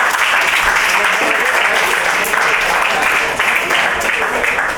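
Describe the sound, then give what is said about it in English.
A stand-up comedy audience claps steadily and loudly for the whole stretch as comic J.R. Havlan is introduced, a dense, sustained wash of applause with no pauses and no voices standing out. “Clap the whole time.”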